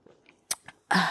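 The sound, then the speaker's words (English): Someone sips hot homemade tea from a cup: a couple of quiet mouth clicks, then a loud, airy slurp that runs to the end, with no talking. “And 1 second, family, I have to sip my tea.”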